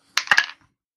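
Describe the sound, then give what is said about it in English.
A quick clatter of dice rolled for an attack in a tabletop game, tumbling across a table and coming up 11: three sharp hard knocks within half a second, then a soft settling tick before silence. No one speaks. “Did you roll an 11 or did you do your plus?”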